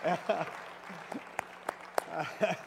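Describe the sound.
A church audience, back in church after months away, gives God a hand with scattered, uneven claps, a few sharp distinct hand claps standing out among murmuring and raised voices, moderately loud throughout.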